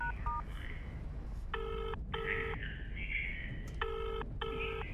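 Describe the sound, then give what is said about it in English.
A telephone rings in a double-burst pattern, two pairs of buzzy, mid-pitched rings separated by a pause, over a steady low background rumble, with a couple of short beeps at the start. “Come on, Smith, pick up.”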